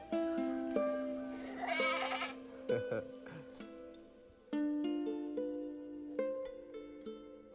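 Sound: goats bleating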